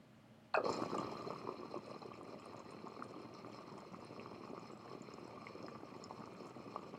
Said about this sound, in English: watching the water percolate through the bloop disc and everything and stack up around everything, and watching the drain just dumping bubbles right back into the perc